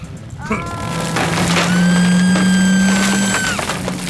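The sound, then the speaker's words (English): A heavy vehicle engine drones steadily while a tree cracks and splinters beneath it as the vehicle, driven by Torque Tyger in the Creaky Trees forest, drives over the tree: a crunching burst of breaking timber over a loud, sustained motor hum with a high whine. “Torque Tyger just drove over the tree, crushing the lady in the process, bringing his total up to 78 points.”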